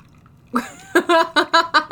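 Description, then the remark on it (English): Someone blows bubbles through a straw into a Moscow Mule, a quick run of five or six loud, burbling gurgles in an uneven rhythm after a brief quiet start. “Blowing bubbles in it like a child.”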